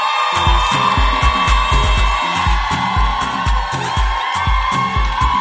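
A loud, sustained burst of crowd noise: an audience claps and cheers continuously, with a steady rhythmic thump underneath and occasional whoops rising above the roar.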